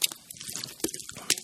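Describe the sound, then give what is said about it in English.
Someone sips water: a brief run of soft, wet slurping and mouth sounds with a couple of sharper clicks, and no talking. “I had to get my water, because I tell you what, you just get so thirsty up here.”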